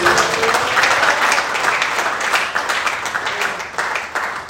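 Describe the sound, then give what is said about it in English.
An audience claps for Jesus in sustained, dense applause, many hands striking in a steady crackling wash that stays loud throughout with slight swells and dips. “Can we clap for Jesus?”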